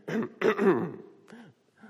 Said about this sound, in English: ugly cough and snort and cry. Hold on.